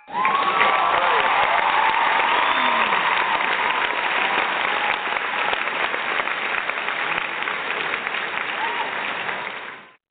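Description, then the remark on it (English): Loud, sustained applause from a crowd, dense clapping with a few cheers and whistles, filling the whole stretch at steady volume before cutting off abruptly at the end. “That's the applause I ever heard from me in my whole lifetime, man.”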